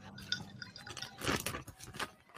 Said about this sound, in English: Can you chug a sparkling water and not burp?